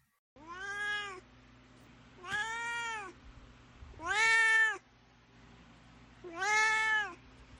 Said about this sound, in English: And now it's time for Duarte's Corner, where my cat, Duarte, will share his opinions on the book.